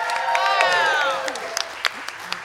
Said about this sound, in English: by the way, the crowd erupted like a volcano, guys.